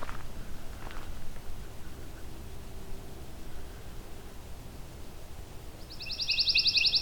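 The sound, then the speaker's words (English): A pine warbler directly overhead sings one fast, even, high-pitched trill near the end, fairly loud over a steady background hiss. No one speaks. “Got a pine warbler right above me now.”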